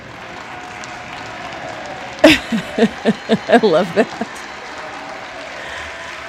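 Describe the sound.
Steady clapping from a crowd runs as a dense, hissy wash through the whole clip, with a sharp bang near the start and a voice speaking briefly over it.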